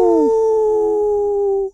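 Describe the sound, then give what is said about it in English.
A person howls at the moon like a wolf: a single long howl rings out loud, holding a steady mournful pitch for nearly two seconds before cutting off abruptly. No one speaks. “FYI, if you howl at the moon, you'll see the moon in a different color.”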